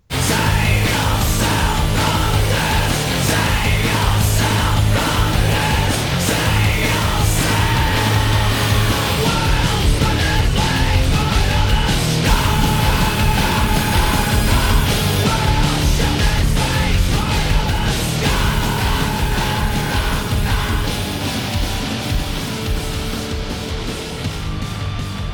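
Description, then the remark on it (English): A loud, dense metal song plays throughout, with distorted guitars and pounding drums driving under intense screamed male vocals that stay upfront and aggressive for the whole stretch. “And although it's super intense, it's almost kind of catchy the way he screams it.”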